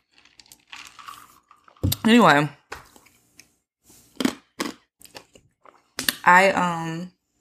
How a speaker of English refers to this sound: y'all hear me chew the ice. Think my iron is really low. That's how I monitor it.